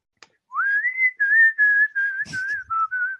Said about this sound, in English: And now the whistling section.